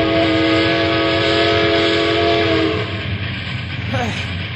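A train rumbles steadily and loudly along the tracks, with a sustained horn blaring for the first few seconds before fading into the continuous rolling noise.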